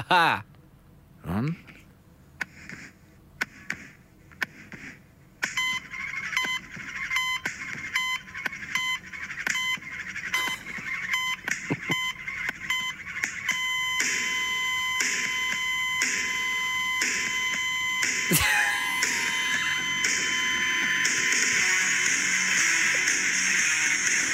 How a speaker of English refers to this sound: But his theme tune is just fucking thrilling. I absolutely love it. I'm going to quickly play it. Just because I find it so delightful.